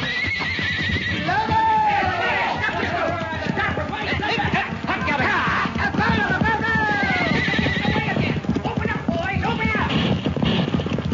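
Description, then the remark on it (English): Several horses whinny loudly with rising, wavering neighs while hooves clip-clop steadily underneath, all busy, with some shouting voices mixed in. “Run for your horse, Pancho.”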